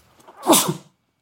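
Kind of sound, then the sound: human body sound, sneeze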